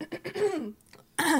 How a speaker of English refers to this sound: Clear your throat, girl. Get into it.